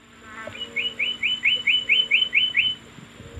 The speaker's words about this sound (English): And there's the Guam flycatcher, the chukawangwang.